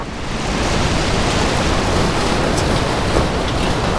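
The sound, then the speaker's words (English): A huge gust of wind roars steadily and loudly for about four seconds, a dense rushing noise with no voices over it. “A huge gust of wind blows over them.”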